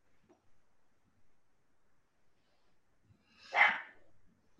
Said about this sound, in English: They get the dogs all excited too, don't they? You can hear that.